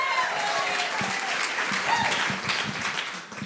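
An audience at Life Central church applauds a speaker who is about to share her testimony: steady, dense clapping from many hands holds for several seconds, tapering a little toward the end.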